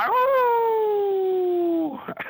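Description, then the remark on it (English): A guest closing out the Old Dogs show on the REI Network does a single long, drawn-out howl in imitation of a hound dog, the pitch slowly sliding downward over about two seconds before trailing off, fairly loud. “Old Dogs REI Network, and we like our guests to close us out with their best old hound dog howl.”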